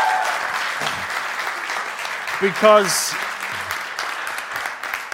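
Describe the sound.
An audience claps steadily in a dense, continuous wash of applause, with a brief voice rising and sliding over it midway and a few scattered words underneath.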